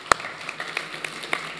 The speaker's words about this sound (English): Yeah, I'm going to clap on that.